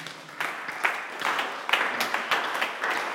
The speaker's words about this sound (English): Father Lord, today, as I clap my hands and pray,